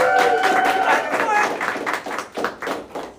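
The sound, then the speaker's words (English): A small church audience applauds to welcome a pastor before he speaks, with uneven, scattered claps that thin out toward the end, and a brief voiced whoop rings out over the opening claps. “One clap on the end here. She did clap.”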